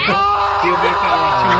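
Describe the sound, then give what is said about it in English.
An alligator snapping turtle lets out a sustained, wavering cry that sounds strikingly like a man screaming, rough and bleat-like, holding steady loudness for under two seconds. “The turtle that cries like a man.”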